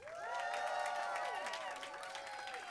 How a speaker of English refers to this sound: Ladies and gentlemen, please will you give me your greatest cheer and applause for one of the most iconic men on the planet, Mr. David Hasselhoff.